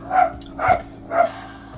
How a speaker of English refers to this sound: Sorry about our dogs.